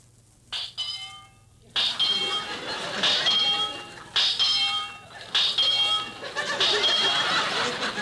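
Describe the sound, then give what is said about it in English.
A comically odd heartbeat of Mr. Benny, heard through a doctor's stethoscope during a medical examination, rendered as bursts of bright, buzzy, warbling tones in a repeating pattern, with a busy wash of laughter-like crowd noise rising underneath. “Well, that's certainly a peculiar heartbeat.”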